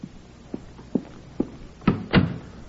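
A few soft, evenly spaced thumps lead up to a door being pushed shut, ending in two close, heavier knocks as it closes and latches. No one speaks.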